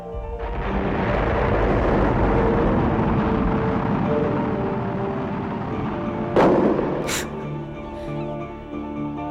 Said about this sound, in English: So what just happened to him? So he had just gone into the air, launched. And then a couple of seconds later, it just exploded like a firework.